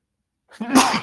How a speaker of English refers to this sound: Damn, excuse me. But I don't have to think about what I know. Yes, I'm keeping that sneeze in this motherfucker. Well, I mean, shit, if you listening to it, I kept the sneeze, because, you know, it's one take scene.